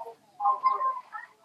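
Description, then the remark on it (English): A faint, tinny voice, the speaker's own, echoes back through a phone set on loudspeaker, thin and band-limited, lasting just over a second with no clear words. “Check that phone very well whether it's on the loudspeaker because I can hear myself, and the awkward like this happens when the phone is on the loudspeaker because I can hear myself.”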